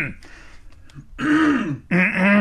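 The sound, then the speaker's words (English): Someone clears their throat in two loud, gravelly bursts, the second starting abruptly after a brief pause, preceded by a quieter rasp. “Clear the pipes, do what you have to do.”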